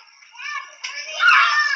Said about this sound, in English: There's kids screaming everywhere. It's like mayhem.